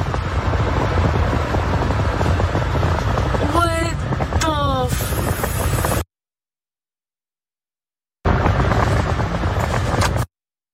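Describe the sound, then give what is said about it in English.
A car drives away during a road rage incident in Harris County as a woman fires shots at it, amid a loud, steady roar of engine and road noise. Brief rising squeals cut through partway, then the sound drops out and returns for a couple of seconds. “Okay, road rage incident, literally, a woman shoots at a car that's leaving.”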